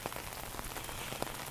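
Steady rain pattering on pavement, a continuous hiss dotted with brief, sharper drop impacts, with no voices present.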